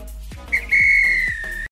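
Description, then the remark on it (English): A referee's whistle blows loud and shrill to end the match, a quick short chirp followed by one long sustained blast, over a low background rumble with no talking. “This is when the ref blew the whistle because it's finished.”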